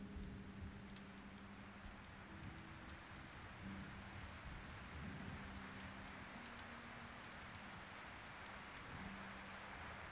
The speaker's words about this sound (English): the wind picks up outside. You look out of the window and see dark clouds above the tree line. The thunderstorm is upon you within no time.